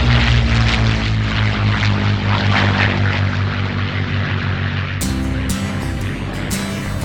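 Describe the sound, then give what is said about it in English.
A propeller airplane drones loudly, its steady throbbing engine hum mixed with rushing wind noise, shifting in tone partway through as it keeps flying. “Whether you got a vacation plan to go over top some mountains or cross some cornfields, we got the plane just for you.”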